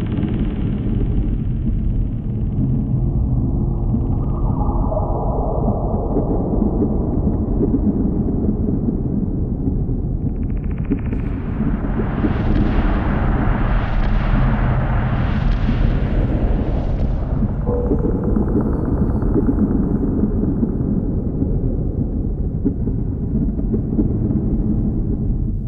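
A dark, slow-moving synth pad track from the first Half-Life video game, built on heavy rumbling low drones, with a brighter sweeping swell that pulses through the middle before easing back down. No voices.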